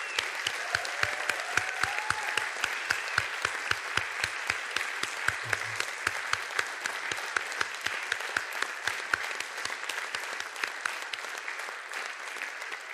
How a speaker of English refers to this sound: So I want to just say once again, a big warm round of applause. Thank you so much, Metropolitan Ballet, for what you shared with us here today.